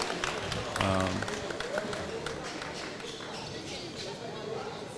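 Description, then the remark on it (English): A large crowd applauds steadily, a dense wash of clapping with scattered cheers, and a brief shout rises above the noise early on before the ovation carries on evenly. “Round of applause for this young man, this young warrior out here.”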